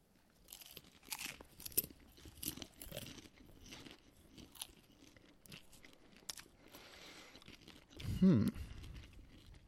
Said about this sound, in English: Chewing them, I tasted absolutely zero spice.